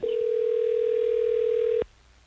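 A steady telephone dial tone hums loud and unbroken for nearly two seconds, then cuts off abruptly, leaving faint background hiss, as hosts of Hot 101.5 radio in Tampa Bay, Florida place an on-air phone call.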